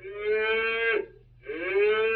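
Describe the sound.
A cow moos twice in a barnyard in close succession, each a long, loud, drawn-out low call lasting about a second, separated by a brief pause, with no other sounds around it.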